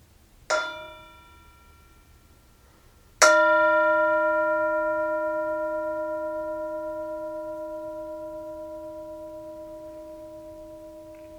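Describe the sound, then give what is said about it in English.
A Tibetan singing bowl is struck twice, a light tap followed a few seconds later by a firmer strike that rings on with a long, shimmering, slowly fading hum. “And as always, we have the Tibetan Singing Bowl, and you are invited to enjoy, be present, be mindful to the sound of the bowl, to the sound of the bell.”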